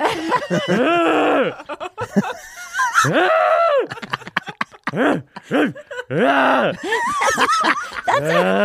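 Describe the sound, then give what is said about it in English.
A person imitates a horse whinny with loud, strained, wavering squeals and nickers rising and falling in pitch, continuous for several seconds. “that's a horse doing it in the moment.”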